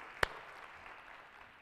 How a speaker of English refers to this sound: Amen. Amen. Give yourselves a hand clap of appreciation this morning.